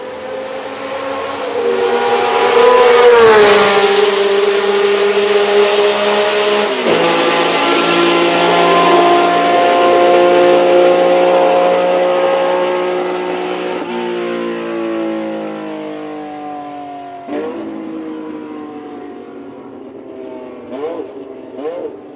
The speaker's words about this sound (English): Yeah, it sounds like another screaming race car. I can't really tell much between these. Sounds good, though. Listen to it on the downshift. That's the giveaway. What? Listen to it on the D-cell downshift. Oh, yeah. He downshifts twice.